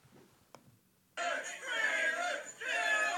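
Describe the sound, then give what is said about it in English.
After a hushed moment and a single sharp click, a large crowd suddenly erupts into loud cheering and chanting as a man on a house roof, on a dare, prepares to jump onto and crush a table, with many voices shouting together, dipping briefly before surging again. “What are they cheering?”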